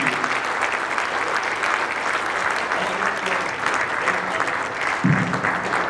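An audience claps steadily, a dense wash of many hands sustained at an even, loud level throughout, with faint voices murmuring beneath and a brief low vocal sound near the end.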